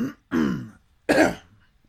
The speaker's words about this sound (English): I'm going to edit that out because I'm coughing over here. I've done pretty good, though. I haven't coughed much tonight.